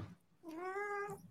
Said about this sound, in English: Ooh, was that a cat? Yeah. You have a kitty? Center of attention. Yeah. What kind of cat is it? Is it Siamese? No. Very vocal.